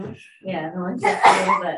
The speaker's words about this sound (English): Bless you.